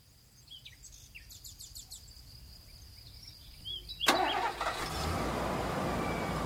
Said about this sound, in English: On a warm day in May of 2016, I gassed up my pickup truck and hit the highway. I was driving north towards a military base in Carlisle, Pennsylvania.